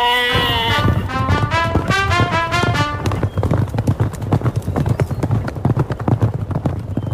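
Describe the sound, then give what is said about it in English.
Goat hooves clip-clop in a quick, steady galloping rhythm, fairly loud, with a wavering animal cry over the first few seconds before the hoofbeats carry on alone, as three goats, two billy goats and one nanny goat, gallop down to a river. “So the two billy goats and one nanny goat galloped their way down to the river.”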